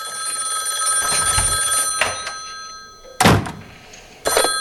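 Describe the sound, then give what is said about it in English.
An old-fashioned telephone bell rings in a sorority house in a sustained metallic trill, with a couple of sharp thuds like a door closing, and no one speaking. “So Jess goes back to the sorority house right as the phone starts ringing again.”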